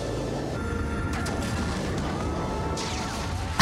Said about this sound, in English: So Indy Joe and Lady have made it from between the two large boats, and the boat pursuing is behind them, and... 90s explosion.